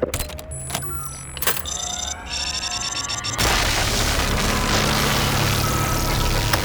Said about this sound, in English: The laser drill has been lowered. Now we're talking. Slice away.